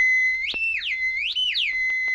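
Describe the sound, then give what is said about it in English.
A shrill, piercing whistled danger call sounded by Tonto to summon the white horse Silver: a steady high tone that swoops upward and back down twice in a wavering, siren-like pattern, loud and alone with no talking. “Sound the danger call, Tonto.”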